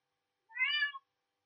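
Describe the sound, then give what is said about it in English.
A single short meow from a cat named Kitty, clear, rising then falling in pitch over about half a second, alone against silence. “Not you, Kitty. It's not your turn.”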